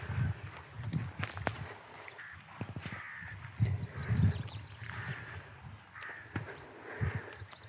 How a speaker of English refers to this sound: So there's quite a few chaffinches, that cascading note. And that pink of the chaffinch. There we go, that's the male chaffinch's call, song.